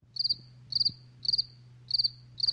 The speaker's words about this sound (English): I want Mike to literally insert crickets, like the sound of crickets after.